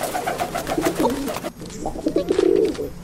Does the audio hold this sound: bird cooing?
yes